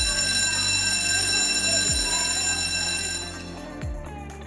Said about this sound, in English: Whenever that bell rings, I feel it in my plums.